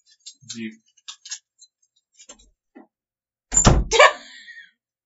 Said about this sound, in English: They can hear your keys jingling. They know you didn't actually leave.